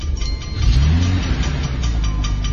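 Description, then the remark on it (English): In a movie scene, a car engine turns over on a voice command and catches, then revs up with a rising, throaty roar that holds steady and loud, with no voices. “Engine. Start.”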